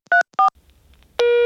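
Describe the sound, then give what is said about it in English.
Two quick touch-tone beeps sound close together, followed by a brief quiet hiss and then a steady, loud telephone dial tone that holds to the end. No one speaks. “So they'd call you up.”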